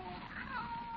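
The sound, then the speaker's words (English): A single drawn-out cat meow, rising and then falling in pitch, fairly quiet against a steady hiss of background noise, with no talking over it. “He's quite a feline, all right.”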